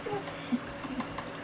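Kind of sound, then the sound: household object, dog pawing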